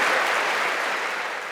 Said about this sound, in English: Look at her. She clapped to make sure he heard all that.